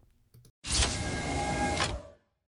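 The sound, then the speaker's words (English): A quick click as a button is pushed, then a time machine's motorized door whirs open with a steady mechanical hum, loud, for about a second and a half before cutting off. No talking. “So let's push the button here and open up the door.”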